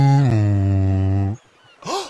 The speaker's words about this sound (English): Uh-oh, Tugger's whistle. You know what that means? Tiger's whistle's blowing, means we must be going.